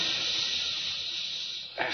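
A steady, loud hiss of escaping steam fills the whole clip, broad and high-pitched, with a brief burst of added noise just before it ends.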